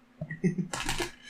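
A brief murmur of voice, then dice clatter and rattle across a hard tabletop in a quick burst of tumbling clicks that fades out within a moment.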